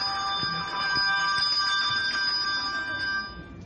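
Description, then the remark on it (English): A handbell is shaken hard in the ringing technique called a shake, so the clapper strikes both sides. It produces a continuous bright, shimmering ring for a few seconds that fades at the end, fairly loud with no talking. “Sometimes you want the movements to be more exciting, and so if you shake the bell hard enough, it will hit both sides of the bell. So this is a shake.”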